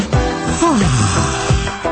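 A single drawn-out human yawn in a radio studio, a voiced sigh whose pitch slides steadily downward over about half a second, with a few short breathy sounds before and after it.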